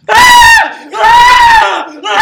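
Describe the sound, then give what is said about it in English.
A voice imitates two teenage girls screaming uncontrollably over a phone call, in three loud, high-pitched bursts, the first two long and sustained, the last cut short. “I swear to God, it was two teenage girls screaming uncontrollably, call ends.”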